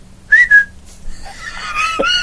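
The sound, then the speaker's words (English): A person whistles two quick, bright notes to call a fish, followed by softer, wavering tones. “You're whistling and for the fish.”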